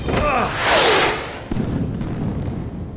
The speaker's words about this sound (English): The missiles! They must have hit the mountains!